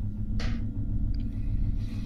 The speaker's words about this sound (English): All right, well, that is going to make some noise. So I am going to roll some dice.